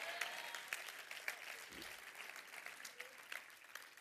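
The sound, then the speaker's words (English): A church audience claps steadily for several seconds after being asked to clap and shout yes, a dense crackle of many hands with sharper individual claps popping out, while a few voices call out faintly beneath the applause. “Somebody clap your hand and shout yes!”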